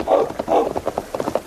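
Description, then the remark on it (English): Hooves of ridden horses clip-clop in a steady, quickening rhythm of hollow knocks as the riders reach a point and draw rein. Moderately loud, with no voices over them. “Reaching the point, Preston and the constable drew rein.”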